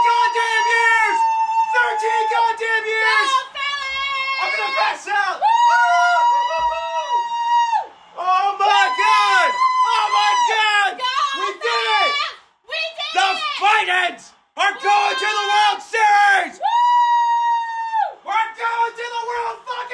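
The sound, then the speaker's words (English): A person yells and whoops excitedly for about twenty seconds celebrating a Phillies win over the Astros, loud and strained, with long high-pitched cries broken only by brief gasps for breath. “Because I was having a hard time breathing because I was yelling so much.”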